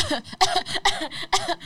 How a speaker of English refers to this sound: What was that supposed to be? A sexy cough? That was not a sexy cough. It sounded like she's dying.